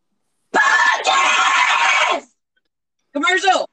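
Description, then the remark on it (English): A loud, harsh, rasping shriek from an Aztec death whistle blasts for nearly two seconds with a brief catch midway. After a pause, a shorter wavering voiced cry follows. “I don't know what just happened, but that scream sounded like an Aztec death rattle. It is. whistle, not rattle.”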